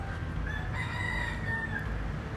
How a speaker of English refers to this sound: As a matter of fact, I was just getting annoyed by this fucking rooster behind me. But you know what? That rooster is our president. He just likes to shout. And this motherfucking rooster has been shouting since about 4 this morning.